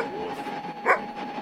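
A single sharp dog bark rings out partway through, short, over a steady low background hum with no one talking.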